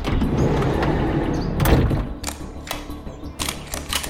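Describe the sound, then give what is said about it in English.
A large jacked-up van with big, fat tires, driven by a couple of armed men, rumbles and comes to a stop, followed by several sharp clunks and thuds of doors opening in quick succession. No one speaks. “Before I could so much as open my mouth, a second, larger vehicle roared towards us. Some kind of jacked-up van.”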